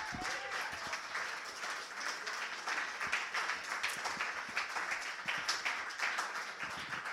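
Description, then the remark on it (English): A crowd at a judged competition applauds a contestant after her judges' scores are read out, many hands clapping in a dense, continuous patter at an even loudness for several seconds, with scattered cheers and a brief whistle near the start. “Give her a big round of applause, guys.”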